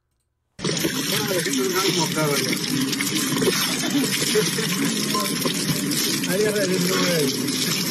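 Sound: shower water running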